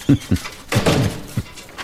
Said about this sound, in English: You mind if I shut the door? This requires a shut door?